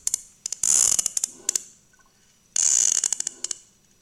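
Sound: sperm whale clicks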